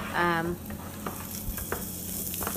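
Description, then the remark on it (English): Chorizo sizzles steadily in a pan, a continuous hiss broken by scattered sharp pops and crackles, opening with a brief tonal scrape of a utensil against the pan. “Now my chorizo has cooked.”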